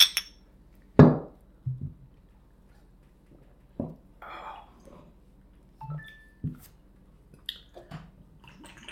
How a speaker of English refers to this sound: All right. Are we ready, fellas? Yep. Oh, okay. Cheers, everybody. We're going to take a shot.